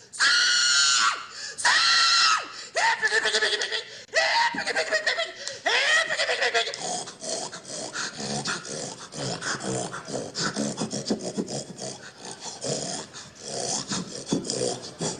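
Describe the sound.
A woman imitates a hog with loud, shrill squeals in a burst of rapid cries, then shifts into a steady stretch of raspy grunting and snorting noises, forceful.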